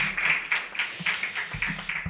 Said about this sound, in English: Cheers to your first YOP open mic poem. Let's give him one more round of applause for that.